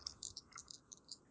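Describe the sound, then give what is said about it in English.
Dice clatter and rattle in a quick, irregular run of small hard clicks, faint, with no voices, as dice are rolled during a game. “Yeah, let me not drop my dice everywhere.”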